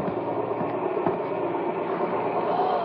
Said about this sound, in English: What's that noise? Sounds like a plane. Hey, Al, come on outside. It's your helicopter.